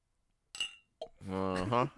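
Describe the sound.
A single bright clink of glasses tapping together in a toast, close and crisp, followed a moment later by a person speaking.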